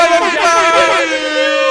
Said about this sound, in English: Injury corner's back. Oh, the air horns.